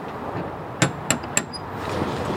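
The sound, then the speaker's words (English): Three sharp, evenly spaced metallic raps of a door knocker against a big red door up a flight of stairs, each with a brief bright ring, over a steady low background hum. “Up the stairs to a big red door with a knocker. Should I use the knocker?”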